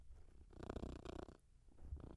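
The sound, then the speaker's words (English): A male cat purrs very close to the microphone, a steady low rumble, while rough bumping and rubbing noises crowd in as he headbutts the microphone. “That's his full name in cat talk. He did headbutt the microphone.”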